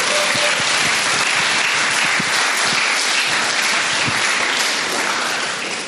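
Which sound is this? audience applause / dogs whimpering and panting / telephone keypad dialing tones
audience applause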